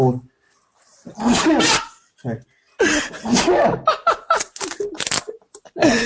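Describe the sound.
A sharp sneeze bursts out in a noisy voiced gust, followed by laughter and animated chatter from several people.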